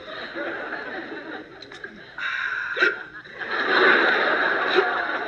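A few short, sharp hiccups pop out at irregular intervals over a busy, hissy background, with faint chuckling and murmuring mixed in.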